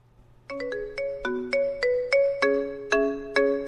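A bright, synthesized phone ringtone plays a catchy pop melody of plucky, marimba-like notes in a steady rhythm, clear with no voices over it, played as a round of the Ringtone IQ guessing game.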